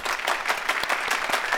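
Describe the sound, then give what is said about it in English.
Steady applause from an audience for a presentation by young people and an adult choir, many hands clapping at once in a dense, continuous patter that stays fairly loud throughout without any voices rising above it. “Let's give them another round of applause.”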